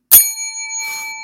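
A single bright ring of a small bell, used as a point system in a game, struck once with a sharp attack and then a clear, sustained metallic tone that lingers and slowly fades, fairly loud.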